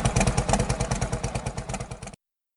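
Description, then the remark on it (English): A loud engine idles with a lumpy, uneven loping beat, its pulses falling into a galloping rhythm for about two seconds before cutting off abruptly. “No, just like it's like galloping horses, right? Almost sounds like two engines.”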